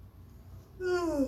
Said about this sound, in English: Sorry for the yawn, Riverdale gang.